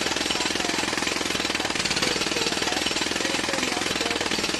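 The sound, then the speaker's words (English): A jackhammer pounds away in rapid, unbroken bursts, loud, with a harsh rattling texture that fills the whole stretch without any pause or voices. “There's just like jackhammer noises playing right now.”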